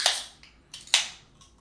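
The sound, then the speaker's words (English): Two Bud Light Seltzer Mango hard seltzer cans are cracked open one after the other, each a sharp snap followed by a short fizzing hiss of escaping carbonation, with a small click between them. No one speaks. “So yeah, I brought, it's a Bud Light Seltzer Mango, but I thought this was really interesting because I kind of think of myself as a casual guy with a little bit of bougie.”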